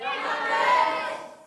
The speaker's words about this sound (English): there's the Patriots, which is a football team in New England, and there's the Falcons, or another football team in Atlanta. And I just want you to scream out who you're cheering for as loud as you can. You ready? One, two, three.